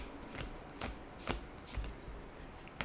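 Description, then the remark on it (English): A deck of tarot cards being shuffled, with a series of sharp, riffling bursts repeating roughly every half second against a quiet background. “I love the sound effects of you shuffling the cards.”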